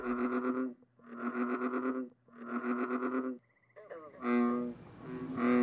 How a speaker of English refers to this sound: Sometimes I remember it was so quiet early morning that I could hear frogs croaking. Yeah, I didn't know what it was at first, but it sounded familiar, and it was springtime.